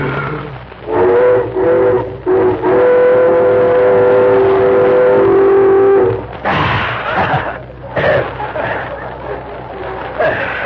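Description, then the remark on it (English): A whistle blown through cupped hands, with the thumbs crooked together and the lips pressed against their second joints, gives a few short hooting notes, then a long, steady, mid-pitched tone that breaks off abruptly, followed by bursts of voices and rustling. “Press the lips firmly against the second joints of your thumb. Yeah, yeah. And then in this manner, it blows, like this.”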